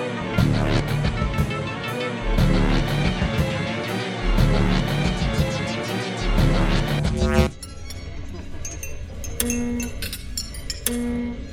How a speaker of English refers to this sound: Is that noise? Oh my. What is it? An alarm. Someone is moving the body.